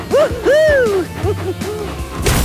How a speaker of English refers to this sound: A big sack fell off one of Thomas's cars and nearly landed on a small green frog.